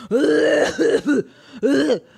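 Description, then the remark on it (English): A loud hacking cough mixed with raspy, voiced throat clearing comes in three rough bursts: a long gravelly one, a short follow-up, then another after a brief pause. “Yeah, that's who you cough like.”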